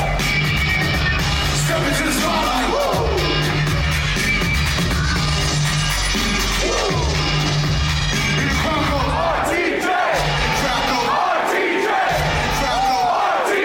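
A huge concert crowd chants and yells in unison, loud and close, over a steady thumping low-end beat that keeps breaking and restarting throughout.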